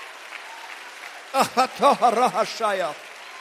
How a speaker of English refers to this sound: Clap again and just let your voice out. Ask for it. Seek him for it momentarily.